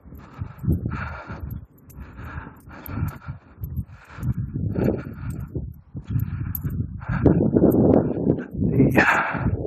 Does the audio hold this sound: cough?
no